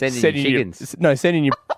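A person loudly imitates a chicken, with a few choppy clucking calls and a drawn-out crowing cry. The burst of calls lasts under two seconds.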